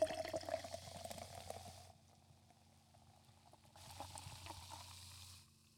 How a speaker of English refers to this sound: So I'm two seltzers deep. And I'm going to pour mine into a glass. Oh, you fucking here. Show off. Listen what to the this. Fuck, man. Listen to this.